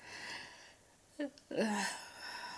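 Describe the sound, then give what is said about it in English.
Heavy breathing over a steady background hiss: a short sharp catch of breath, then a longer, louder rasping breath that slowly trails off. No one speaks. “You heard the breathing that come here, because it was this spirit that I have that go into my body.”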